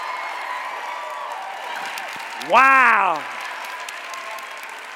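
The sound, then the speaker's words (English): A large audience claps and cheers steadily throughout for artists ranked as top hackers standing up at an awards event, a dense wash of applause, while a single voice exclaims loudly over it partway through. “Let's give these artists a big round of applause.”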